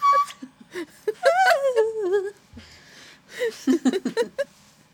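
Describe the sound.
A voice strains upward into thin, high-pitched wavering notes, attempting whistle-tone singing, then breaks off into short, choppy squeaks that sound close to giggling.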